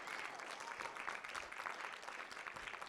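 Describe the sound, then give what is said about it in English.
A crowd claps in a steady, dense wash of overlapping hand claps, moderately loud and even throughout, with no voices standing out above it. “Thank you for clapping.”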